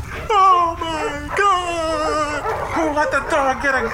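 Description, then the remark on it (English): Agitated dogs that people are trying to adopt whine and yelp, a string of loud, drawn-out, wavering cries overlapping one another with barely a pause for about four seconds. “people are trying to adopt the dogs and the dogs are not, like, they were not informed that this was going on”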